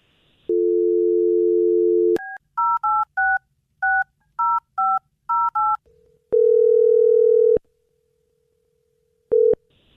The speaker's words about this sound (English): Well, I'm going to dial her phone over right now and see if we can figure out what happened. Here we go.